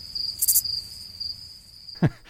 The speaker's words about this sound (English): That's Donald Trump. Those crickets were added, but the ad ends with the answer to his question, where are you?